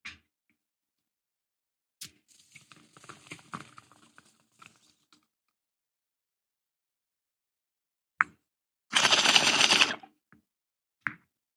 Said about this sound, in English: Okay, cheers. We'll take a rip.